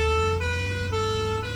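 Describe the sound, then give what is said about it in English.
A loud, steady ambulance siren wails alone, its pitch stepping back and forth between two tones about every half second over a low engine rumble. “Hold on a sec, let's sound the warning siren.”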